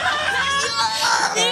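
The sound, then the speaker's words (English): A person lets out a loud, frantic, high-pitched scream like a maniac while jumping on someone's back, strained and wavering, sustained for over a second and a half without any words. “So as this guy, like, rushes … away and starts to move, … just jumps on his back. Like a maniac, screaming.”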